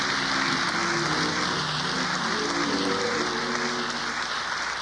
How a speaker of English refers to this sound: But you ought to put your hands together for those other preachers who've been preaching this year.